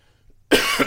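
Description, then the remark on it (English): A single harsh, loud cough from a person with COVID bursts out after a moment of near silence, with a brief rasping tail. “As I sit here and cough my guts up, because this week I got COVID.”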